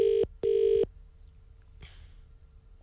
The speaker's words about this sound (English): Did this number actually ring through? This is my phone number when I lived in Timaru. This is a real old phone number.